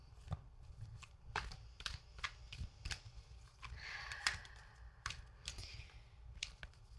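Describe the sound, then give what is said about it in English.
A deck of cards being shuffled: a run of crisp snaps and taps, then a brief buzzing riffle midway, followed by more scattered clicks as the cards are squared up. No talking. “I have the deck and I'll do a shuffle.”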